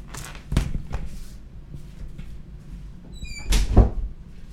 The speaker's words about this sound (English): All right, let me do this. I got to close this door. Hold on.